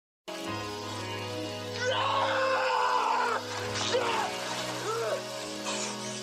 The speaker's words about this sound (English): But what isn't confusing, though, is, and I know you've been wondering about this bit, it's random Cage scream of the week.